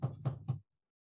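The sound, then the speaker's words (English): Three quick, evenly spaced, solid knocks on a door, then silence. No one speaks. “You do knock on the door.”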